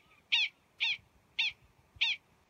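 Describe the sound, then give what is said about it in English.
Prairie dogs, rodents, giving warning calls: four sharp, high-pitched chirping barks repeated at an even pace about half a second apart, clear over a quiet background with no talking. “We leave you this week in the company of prairie dogs.”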